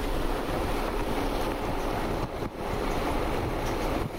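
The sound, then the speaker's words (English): A steady, dense sizzling hiss with a fine crackling texture from inside a box on a kitchen table, heating up after liquid hit a pad inside it; it runs unbroken for a few seconds, fairly loud, with a brief dip partway through and no voices. “You can probably hear it sort of sizzling in there.”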